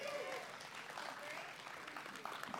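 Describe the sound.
An audience claps steadily, a dense wash of many hands applauding at even loudness for a few seconds, with faint voices mixed in.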